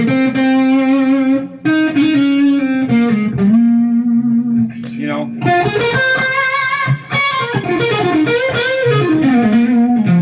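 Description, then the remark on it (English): Electric guitar through an EVH Stealth tube amp on its first channel with the gain down low plays sustained, singing melodic notes with bends and slides, loud, with a brief spoken aside. “I'm actually running through the EVH Stealth right now.”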